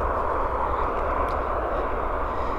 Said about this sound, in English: It would be a peaceful place if it wasn't for the roar of the motorway in the background. I'm just about to drop down to it and cross it. It looks like it's heaving with Easter traffic.